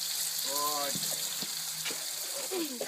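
A hose sprays water in a steady, close hiss that runs the whole time, with a few short voiced sounds and soft knocks breaking through the spray.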